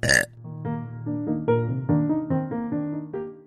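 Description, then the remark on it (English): A long, loud burp, opening with a short rough gust and then stretching into a voiced belch that wobbles through several pitch shifts for about three seconds. “this is Burping It Out, where we don't say what we think, we burp it out.”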